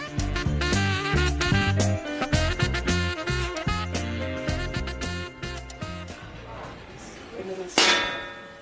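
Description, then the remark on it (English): An old, dead mobile phone that no longer works is thrown into a bin and lands with one sharp, clattering crash near the end, following several seconds of busy, rhythmic tonal music with clinking, metallic hits. “What have you just thrown into that bin?”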